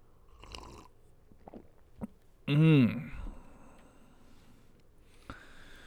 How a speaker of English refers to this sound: Let me have a sip of coffee. I need to get in the groove here.